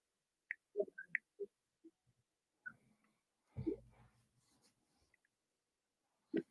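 Quiet, irregular keyboard taps and clicks, scattered and sparse with pauses between them, plus one duller thump midway; no voices, just faint keystrokes.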